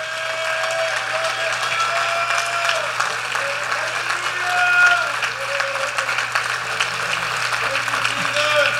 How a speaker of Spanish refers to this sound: Si Dios ha hecho un cambio, algo grande, ha contestado una petición en tu vida, Él ha hecho un milagro en tu vida, dale un aplauso ahorita que se oiga.